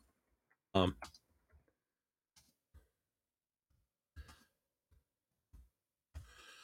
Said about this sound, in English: I'm just typing in a quick note in here.